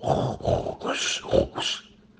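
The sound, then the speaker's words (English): A voice imitates loud snoring: about five rough, throaty, rasping bursts in a quick, steady rhythm, each under half a second, before the sound trails off into quiet. “And then he goes and sleeps, and he snores like this.”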